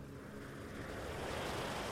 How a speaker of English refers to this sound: It's washing in and out with the waves that wash upon the shore.